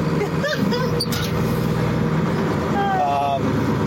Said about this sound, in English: Yeah, and also just so it's not so loud. Yeah. I'm just running the tractor pretty slow here.